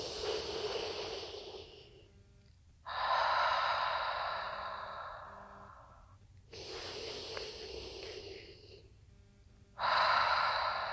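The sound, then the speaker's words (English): Slow, open-mouthed breathing with a constricted, raspy throat sound: a breathy hee on each inhale and a ha on each exhale, about two full cycles, fairly loud with no talking. “do this breath with your mouth open, it would be a creating like a hee-haw sound, a hee with every breath in, and a ha with every breath out.”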